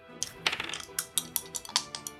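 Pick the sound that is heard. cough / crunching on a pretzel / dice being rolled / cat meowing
dice being rolled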